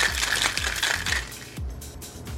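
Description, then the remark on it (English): A cocktail shaker holding gin, grenadine, lemon juice and egg white rattles in quick, steady strokes, ice clattering sharply with a dull thump on each beat, about two shakes per second, loud and continuous with no talking. “And then here's the egg white right here, right? Shake this up.”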